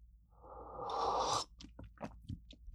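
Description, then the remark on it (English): An airy slurp lasts about a second, then a few soft wet mouth clicks and a swallow follow. It sounds like someone sipping coffee, with no talking. “Okay, let me take some sip of coffee.”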